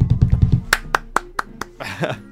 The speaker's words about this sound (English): A happy ending for Bohemia. Round of applause for Bohemia.